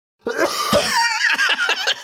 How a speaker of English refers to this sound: I'm going to see, just thinking about it, it's making me cough.